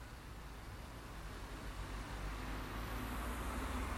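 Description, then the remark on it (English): Steady roar of road traffic, with a low rumble and broad hiss that swells slightly as cars pass by. No voices. “certainly there are quite a few cars here”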